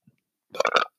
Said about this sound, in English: Oh, I keep on burping. I'm very sorry if somebody's getting annoyed by that.